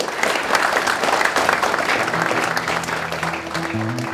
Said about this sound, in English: So could I have a round of applause, please